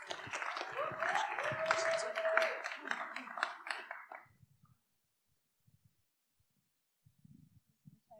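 An audience applauds as the second speaker is introduced, with dense, steady clapping and a brief whistle, then the applause dies away after about four seconds, leaving near silence before some faint low voices at the end.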